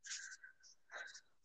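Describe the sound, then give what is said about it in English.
Soft papery riffling and sliding of a deck of tarot cards being shuffled, a few quick rustling bursts at low volume, with no voices. “So I'm doing a shuffle right now.”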